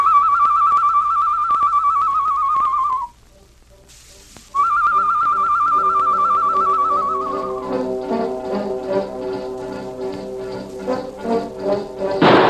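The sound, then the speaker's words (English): Tonto whistles a bird call: two long, steady, fairly high notes separated by a short pause, the second sagging slightly in pitch, followed by a stretch of tapping and clattering under a droning tone. “Me make bird call, huh?”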